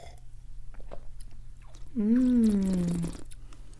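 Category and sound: food or drink, sipping and tasting wine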